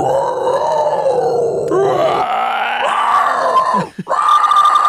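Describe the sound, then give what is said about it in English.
A person growls and roars in imitation of a dinosaur, a long, loud, rasping bellow that shifts pitch, breaks briefly, then resumes strongly. “Do your best dinosaur.”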